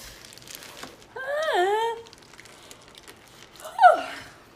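A fairly loud sneeze: a drawn-out, voiced wind-up breath that rises and falls in pitch, then after a short pause a sharp, explosive burst trailing off, with no talking.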